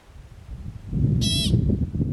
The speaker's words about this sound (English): Pikas are small, hamster-like creatures that are often seen perched on rocks, and most hikers will recognize their loud squeaking sound. They sound something like this.